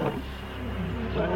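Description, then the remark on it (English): A lion roars, a deep, loud, rumbling growl that holds steady for the whole short moment, with a rough, throaty texture and no pause. “A lion's roar can be louder than a jackhammer.”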